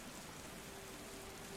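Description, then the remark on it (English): Steady rainfall hisses softly and evenly throughout, a dense wash of patter with no distinct drops standing out and no voices. “But the rain continues to fall around you.”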